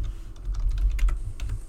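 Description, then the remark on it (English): Quick, uneven keystrokes clatter on a computer keyboard, with a steady low rumble underneath and no one speaking. “Ignore my terrible typing here.”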